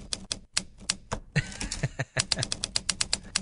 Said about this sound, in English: It's a fair dinkum typewriter for your iPad. Yep. The Hanks Writer, H-A-N-N-X is all you need to search for. And it's a document writer, so it's a good old-fashioned.